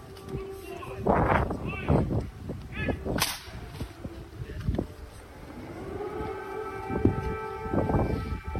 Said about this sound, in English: Joe Biden goes into an otherwise quiet Kyiv, and when he's introduced, air raid sirens come on cue.